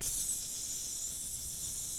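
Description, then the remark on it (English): A steady, bright sizzle of chicken fajitas on a hot plate at a table in a Benny Hama's, a continuous high hiss that holds even for about two seconds with no voices over it. “Sizzling?”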